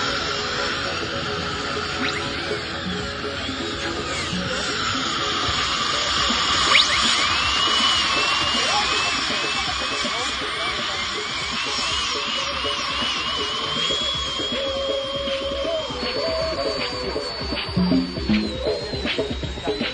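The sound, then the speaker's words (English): A dental drill whines continuously at a high pitch, its tone rising and dipping in short shifts over a steady low rumble, fairly loud throughout the twenty seconds. “Maybe I could feel the drill, and maybe I couldn't.”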